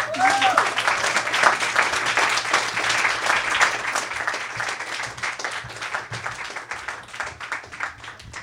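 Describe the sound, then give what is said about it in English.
Sustained audience applause at a reading event after a reader finishes, dense and fairly loud, with many hands clapping together for several seconds before tapering slightly, a faint murmur of voices mixed underneath. “This applause is amazing.”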